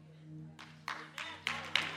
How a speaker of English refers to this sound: He clapped because he already know